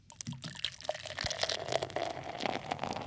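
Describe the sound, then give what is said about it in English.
Beer pours steadily into a cool glass on a hot summer's day, a continuous gurgling splash with fizzy bubbling that rises slightly in pitch as the glass fills; no voices. “Cool glass of beer on a hot summer's day.”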